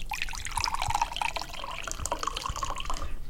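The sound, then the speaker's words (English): Coffee is poured into a cup in one steady stream lasting a few seconds, the liquid gurgling and trickling without pause. No one speaks. “Let me just pour a quick cup of coffee.”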